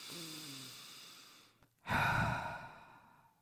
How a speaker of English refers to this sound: And every time you breathe in, you can kind of feel your armpits get bigger, your back get bigger. And let's take 2 or 3 more true heart breaths.